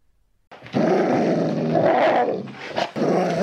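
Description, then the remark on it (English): A dog growls low for about three seconds, a sustained rumbling snarl with a brief break near the end before it resumes. No one speaks. “Don't listen to the dog. He's crazy.”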